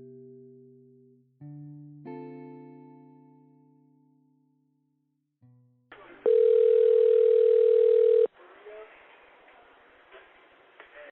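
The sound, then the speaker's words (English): A phone line connects with hiss and a loud, steady ringing tone lasting about two seconds, preceded by a few soft, sustained musical tones and followed by low line noise. “The night everything changed for Willie's friends and family started with this phone call.”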